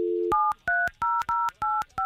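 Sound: telephone number being dialed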